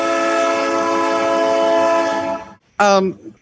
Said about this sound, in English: Here comes the train.